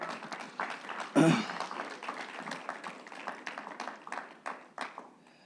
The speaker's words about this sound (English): Give the word of God a hand clap.